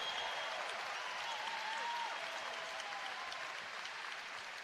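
crowd, basketball crowd applauding

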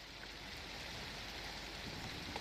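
nature, rain falling

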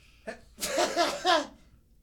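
human body sound, sneeze

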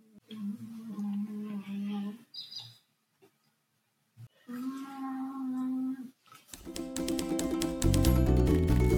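animal, dog snoring

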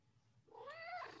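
animal, cat meowing

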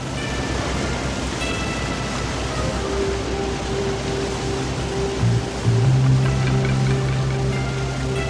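nature, raging waterfall

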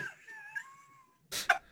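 animal, cat meowing

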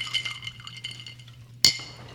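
household object, glasses clinking

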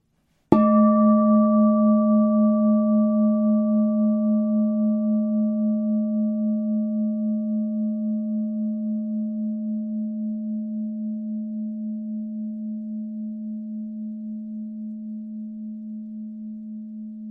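singing bowl ringing

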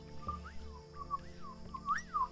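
sound effect, whistle

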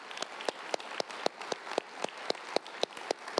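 crowd, applause

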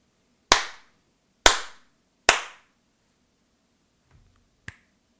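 human body sound, three hand slaps

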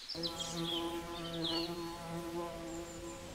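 insect, bees buzzing

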